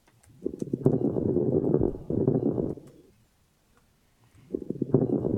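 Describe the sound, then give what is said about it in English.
Lung crackles through a stethoscope: a muffled low rush of breathing peppered with fine crinkling clicks, one long breath, a pause of near silence, then another breath beginning. “It's very difficult to record from a stethoscope and make it sound like what you hear in your ears, but it just kind of sounds like crinkling cellophane.”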